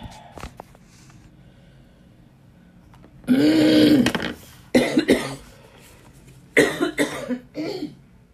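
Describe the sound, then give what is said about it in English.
Several harsh coughs come in bursts, with a throat-clearing rasp among them, separated by short quiet gaps; no one speaks. “I coughed enough.”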